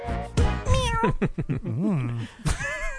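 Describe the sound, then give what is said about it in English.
A person voices a string of drawn-out, wavering meows, fairly loud, imitating a cat with rising and falling yowls over about three seconds. “That's a good impression of a cat.”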